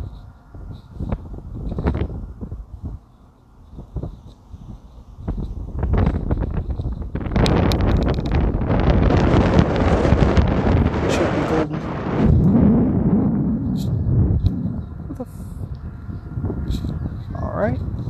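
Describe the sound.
Heavy wind in a parking lot buffets the microphone in loud, rumbling gusts that swell and roar for several seconds before easing off, with a person talking intermittently beneath the blustery noise.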